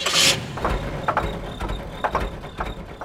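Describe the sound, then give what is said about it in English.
A car engine runs steadily with a low rumble and recurring mechanical knocks, fairly loud, after a brief hiss at the start. “But a car's engine is also an example of how we've controlled fire.”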